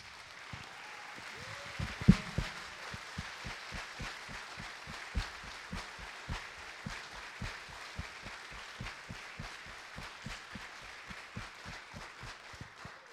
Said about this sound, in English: So we just want to honor you, veterans, those of you who have served our country faithfully. Can you please stand where you're at right now, please, and let us just give you a round of applause.